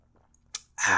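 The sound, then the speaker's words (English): A short slurp from a giant cup, followed by a loud, breathy exhale right at the microphone, with no talking. “Sorry, I had to take a sip from my giant cup.”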